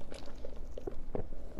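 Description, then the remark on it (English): Quiet sipping of coffee, with a handful of soft wet mouth clicks and gulps scattered irregularly over a second or two, and no one speaking. “Sorry, I'm sipping my coffee.”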